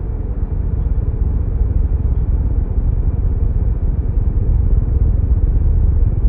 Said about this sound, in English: My pulse quickened as the engines kicked in, and we started moving.